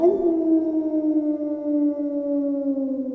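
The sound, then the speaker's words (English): A wolf howls in one long, sustained note that slowly slides lower in pitch, steady and fairly loud, with no voices or other sounds around it. “What was that? It sounded like a wolf.”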